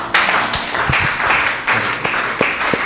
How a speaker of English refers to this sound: It's a good thing to stand and clap. Don't sit down.